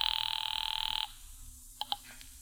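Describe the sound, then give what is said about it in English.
A pay phone in a phone booth rings in a fast, buzzing trill for about a second as a call is placed, then stops. Two brief electronic beeps follow, like a call going through, over a low background hum. “Now, when the cab and I had made it back to town, I pulled up at the nearest phone booth.”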